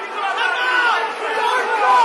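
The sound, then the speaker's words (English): A football stadium crowd at a Burton match applauds Joel Narsha at half time, a steady, dense roar of clapping mixed with cheering voices that swells slightly near the end and carries on without a break for a couple of seconds. “Apart from Joel Narsha, you can hear the applause for Joel Narsha.”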